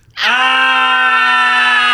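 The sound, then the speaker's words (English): A loud, sustained scream, deliberately performed as a scream-queen scream on a radio show, starts abruptly after a brief pause and holds a steady, bright pitch for nearly two seconds without breaking, with no talking over it. “Okay, we gotta scream for real.”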